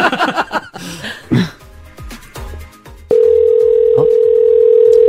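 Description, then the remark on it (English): After a few seconds of brief, scattered noises, a loud, steady telephone ringing tone of an outgoing giveaway call to a listener in Stony Plain starts abruptly and drones on without a break until the end, with a short blip partway through. “We could be calling you right now.”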